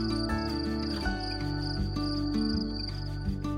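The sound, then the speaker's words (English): Crickets chirp softly in a steady, continuous trill, set against a low, sustained musical drone with gentle shifting tones. No one speaks. “It was the gentle flowing of a stream, the rustling of the leaves, and the soft chirping of crickets.”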